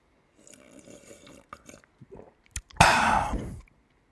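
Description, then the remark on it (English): Wet mouth noises of someone deliberately gulping water loudly, not through a straw: a series of small slurps and swallows, then a harsh, noisy gulp near the end. No one speaks. “A big gulp? No, it's just water.”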